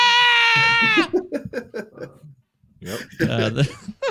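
A loud, high-pitched scream holds steady for about a second, followed by choppy vocal sounds and a shorter strained wail near the end.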